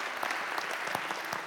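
A crowd applauds a pastor being called up to the front, a steady, dense patter of many hands with sharp individual claps popping out of the wash. The applause holds at an even, moderately loud level throughout, with no voices.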